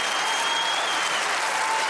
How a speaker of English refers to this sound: Folks, I'm not playing games. I'll stop the show. That's enough applause. If you want exuberance, that's a, this is a New York show. It's not supposed to be that. Exuberance is the West Coast. That's my whole point. Applause is killing this city.